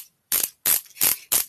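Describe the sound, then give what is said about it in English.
Ratchet clicking while a cast is retightened by pressing down and twisting: four bright, raspy bursts in a steady rhythm, each a quick run of clicks with short pauses between them, with no voices. “You're tightening something with a screw.”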